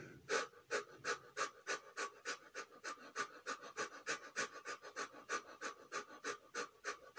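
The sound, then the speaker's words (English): Rapid, rhythmic breaths of a breathing exercise repeat steadily, about two or three per second, with sharp airy bursts. No one speaks; the quick panting pattern continues evenly throughout. “Let's begin with those quick breaths from now.”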